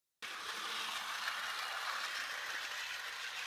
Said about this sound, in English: But Rudy brought in his little set from home, and we've hooked up a wireless lavalier mic so that we could hear the sound of the train going around in circles and not have to worry about microphone cables.